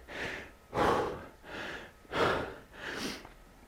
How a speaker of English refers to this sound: Oh, there you go. Didn't take too long for my breathing to get under control.